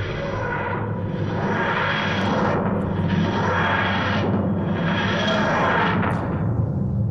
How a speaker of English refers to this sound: Alright, yeah, let's do it. TARDIS sound away!